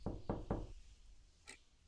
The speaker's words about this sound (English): Fine. I am going to knock on the door.